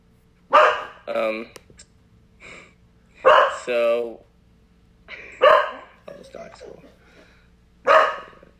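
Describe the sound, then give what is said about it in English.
A male pet dog barks in loud, short bursts, often two in quick succession, repeating several times with brief quiet gaps between volleys. “Yeah, you can hear my dog.”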